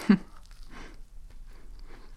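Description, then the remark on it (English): Someone bites into a crunchy-topped cinnamon-apple cookie with one sharp crunch, followed by a few softer, irregular chewing sounds at low volume with no talking. “I like the crunchy top.”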